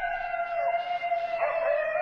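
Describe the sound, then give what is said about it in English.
Several wild canines howl together in long, wavering, overlapping tones that hold steadily for the whole stretch, with one voice bending in pitch partway through. No one speaks. “All right, you're hearing just the howling there.”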